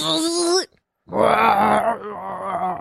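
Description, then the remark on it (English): A person vocally imitates an electric car: a short rising, tonal hum, a brief pause, then a longer, buzzy, steady whine that eases slightly in loudness toward the end. “Electric car.”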